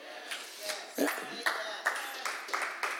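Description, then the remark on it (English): An audience claps in scattered, roughly rhythmic bursts, about two or three crisp claps per second, with voices murmuring underneath. “Sushi for all of you who just clapped.”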